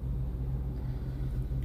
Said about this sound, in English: Well, if she wouldn't rev the damn engine like that, then she'd be okay.